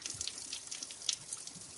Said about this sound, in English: Well, very predictably, the water is coming out through the holes. But it's coming out quite a long way, squirting out a good couple of foot from the very bottom hole.